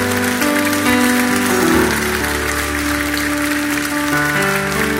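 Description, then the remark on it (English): An audience applauds in a dense, steady wash of clapping that holds for about five seconds, with sustained keyboard or organ chords playing underneath and no one speaking. “Let's give them a hand clap for getting saved.”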